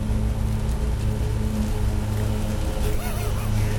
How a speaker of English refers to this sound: Yeah, now eagle-eared viewers may be noticing that it's raining lightly, and that's cool.